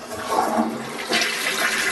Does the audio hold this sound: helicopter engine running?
no